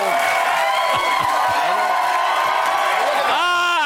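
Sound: crowd cheering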